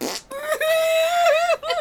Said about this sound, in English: And then he farts.